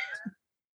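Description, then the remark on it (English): A cat lets out one short, quiet meow, high-pitched and slightly falling, lasting about a third of a second, then silence. “I did not discover my love of cats until later. They were latecomers into the life. I see that. And one has joined us on the podcast.”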